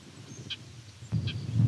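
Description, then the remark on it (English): An eastern meadowlark call: two short, buzzy high notes spaced under a second apart, fairly faint over a steady low rumble of wind or handling noise. “There's an eastern meadowlark. Another eastern meadowlark call.”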